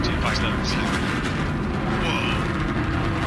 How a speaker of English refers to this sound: Oh, my goodness. Listen to the roar of the BE-3 engine. We are just about to pass through Max Q, maximum dynamic pressure.